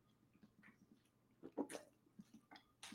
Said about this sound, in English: Oh, sorry for the ugly water drink on the pod, but I had to do it. Oh my God, my throat was going to hell there.